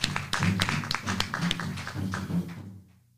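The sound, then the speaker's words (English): A group of people claps their hands in a dense, uneven patter of sharp slaps for a few seconds, with a low murmur of voices underneath, before the applause stops abruptly. “Can a hand clap on that?”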